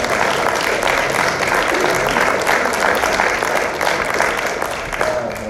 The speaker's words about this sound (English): Hey, let's give him another round of applause.